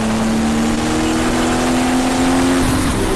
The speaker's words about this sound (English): Just gotta love the sound of those butterflies whenever they change gear out of the turbo.